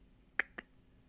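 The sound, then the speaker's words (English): Two sharp, typewriter-like clacks about a fifth of a second apart, the first followed by a short bright ring, over a quiet background with no talking; a sound effect marking a score being added to the Ghost Train ledger. “That's the sound effect of the score being added to the ghost train.”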